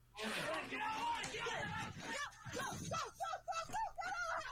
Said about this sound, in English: Oh, no. Now they're running through their house screaming, and we don't know where it ends.